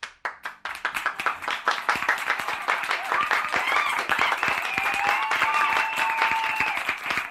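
A few scattered claps quickly swell into full, steady audience applause that holds for several seconds, with faint cheering voices rising beneath the clapping toward the end.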